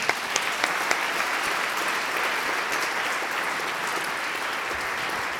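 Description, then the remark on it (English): A room full of people claps steadily for a panel, a dense wash of applause that holds at an even level for several seconds with no voices rising above it. “Let's give our panel a round of applause.”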